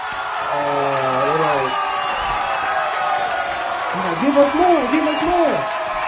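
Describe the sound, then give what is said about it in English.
A crowd of about 9,000 people in a building roars and cheers in a dense, steady wash of noise, with individual voices whooping and calling out above it in rising, excited bursts. “We got 9K people up in this mug. The crowd is going crazy.”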